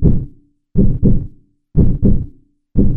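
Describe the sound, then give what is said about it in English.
A human heartbeat thumps in steady lub-dub pairs, about one beat per second at a calm resting pace, deep and loud with brief silences between beats. “The human animal averages 60 to 100 heartbeats a minute.”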